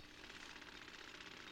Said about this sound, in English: Yeah. Just normal day. Guy using a jackhammer.